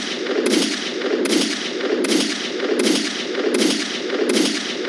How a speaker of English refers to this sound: Oh my God, where are the gunshots?